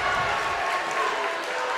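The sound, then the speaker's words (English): A basketball crowd at a Laurel Highlands versus Albert Gallatin game roars and cheers as momentum shifts toward Albert Gallatin, a steady, dense wash of noise, with clapping and shouting blended together and no pauses across the short stretch. “Laurel Highlands is going to turn the ball over after the Colonial miss, and I'll tell the you crowd's what, getting a little into it here as momentum might be shifting a little bit towards Albert Gallatin.”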